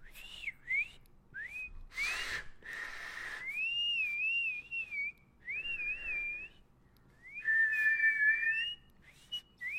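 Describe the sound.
A man whistles using his claw hand: a wandering, sliding melody in several phrases with short pauses, clear, with a couple of brief breathy bursts early on and no talking.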